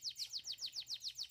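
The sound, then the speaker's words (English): A canary chirps in a quick, even run of about eight bright, high notes, each one a short downward-sweeping tweet. It sounds fairly soft, with no voices. “I'd much rather have tuna than a yucky canary.”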